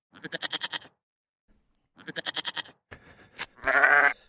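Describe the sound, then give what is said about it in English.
A voice imitates a sheep, giving two wavering, pulsing bleats separated by a pause, followed by a longer, strained bleat after a brief click, all fairly loud. “And then that's a sheep.”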